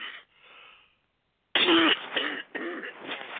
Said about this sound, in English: The other part of it is, now I haven't been coughing all day long. I don't know what this is about, but I'm going to take a sip of water so I can not cough all in your ears.